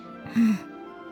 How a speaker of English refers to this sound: Slowly let it out. You should be breathing in through your nose. Out through your mouth.